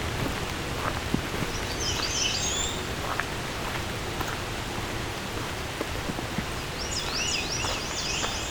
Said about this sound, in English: Lots of American red starts. Whoa! That one's right here somewhere. Right above me.